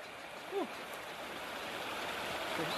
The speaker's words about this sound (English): Earlier today, I did an ice bath. You know, I go in the creek, melted snow that is water going through the town, and it's very cold.